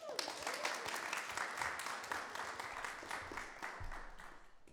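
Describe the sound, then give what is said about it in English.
An audience applauds steadily for several seconds as thanks for a staff member's work setting up family services, a dense wash of many hands clapping at a fairly even level before easing slightly toward the end. “You should have clapped for longer.”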